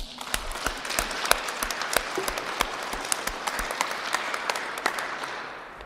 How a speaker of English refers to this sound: The lives of our sisters giving their gift to us sparks that joy. And so we clap.